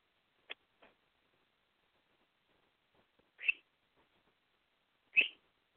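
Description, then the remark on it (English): A pet bird chirps twice, short bright calls a couple of seconds apart, after a few faint ticks and clicks, otherwise quiet, with no talking. “Pony Bird. I hear you.”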